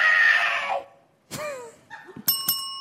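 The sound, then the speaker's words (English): A loud Bop It handheld electronic game's losing sound effect: a harsh noisy blast, a synthetic downward-sliding whoop, a few short blips, then two bright, ringing chime-like tones. No one speaks. “If you don't know, Bop It is a handheld electronic game that sort of, it's like Simon Says, but it just tells you to do things, right?”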